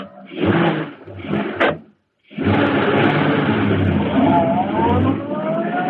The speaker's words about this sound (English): As Bleeker's car swung into the street and turned toward Schaefer's parking lot, a huge, sleek black car started along behind them. It was the car of the Green Hornet.